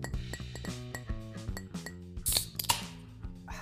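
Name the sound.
glasses clinking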